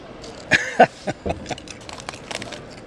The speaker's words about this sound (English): Oh, rustic. Ooh. Light on the nose. Impressive crunch. Very good crunch, yeah. Tastes like crisps.